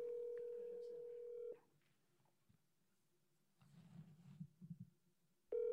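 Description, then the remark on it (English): An outgoing call's ringback tone on a call to a boy's Apple Watch: a steady electronic ring lasts about a second and a half, then pauses while a faint voice murmurs, and a second ring begins at the end. “Two rings?”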